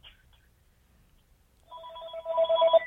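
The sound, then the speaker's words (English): A telephone starts ringing partway through, a bright electronic ringtone with steady tonal bands that grows louder toward the end after a near-silent start. “This phone is ringing.”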